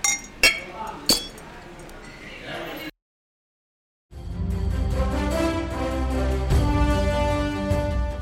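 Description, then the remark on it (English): Two bright, ringing clinks of glasses touching in a toast, followed by a brief silence and then steady music starting up. “these days, whether you think the glass is half full or half empty, there's still room to fill your drink. Cheers.”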